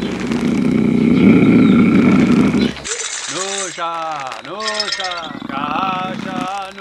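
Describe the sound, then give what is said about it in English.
A low, rough jaguar roar rumbles steadily for about three seconds, then gives way to wavering voiced sounds that rise and fall in pitch. “Oh boy, that sounds like a jaguar.”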